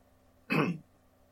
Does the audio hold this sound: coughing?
yes